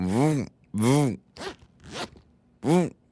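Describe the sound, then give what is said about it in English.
The zipper of a purse is pulled back and forth in five quick raspy strokes, each a bright ripping buzz separated by brief pauses, with no talking. “This is the zipper of my purse.”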